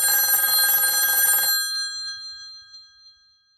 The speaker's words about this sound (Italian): Lo squillo del telefono dello studio mi attraversò come la lama di un coltello.